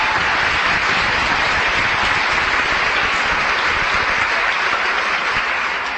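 A crowd applauds steadily at an essay and poster contest event, a dense wash of many hands clapping at an even, loud level throughout with no break and no voices standing out.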